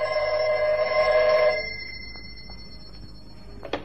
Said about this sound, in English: I'd hardly time to look over the papers on my desk that had accumulated during my absence when the phone rang.